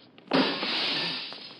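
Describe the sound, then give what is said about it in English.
A ground-level living room window at the side of a house is smashed to get in: the glass breaks in a sudden loud crash, followed by a second or so of bright, hissy shattering that slowly fades. No one speaks. “Now, most of the glass is out of the way. Now we go in.”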